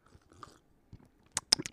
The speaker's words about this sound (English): So, should I take a sip of coffee? I have coffee, I have water, and in the fridge.